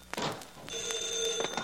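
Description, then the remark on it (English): An old-fashioned private telephone bell rings in one short, rattling burst with a bright metallic tone. It is clear, with no voices around it. “My private phone. Probably my wife.”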